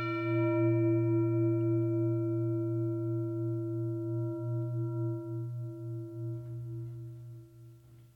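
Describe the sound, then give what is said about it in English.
A singing bowl is struck once like a gong, ringing out with a rich, steady hum that slowly fades and wavers over several seconds, heard alone. “So while you're doing that, I'm going to gong the singing bowl.”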